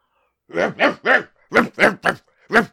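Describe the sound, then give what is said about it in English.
A person imitates a dog barking: seven loud, voiced woofs in quick groups of three, three, then one, with short pauses between them. “Oh, it looks like there's a dog running around.”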